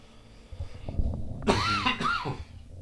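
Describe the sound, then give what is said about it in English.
Two harsh coughs in quick succession, each a sharp raspy burst trailing into a throaty wheeze, over a faint low background rumble with no talking. “Sorry, a lot of coughing.”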